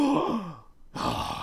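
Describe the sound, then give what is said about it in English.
A person imitates a character's exaggerated Hamon breathing: a long, loud, groaning exhale, a brief pause, then another forceful, breathy rush of air. “Yeah, and he breathes in a really exaggerated fashion.”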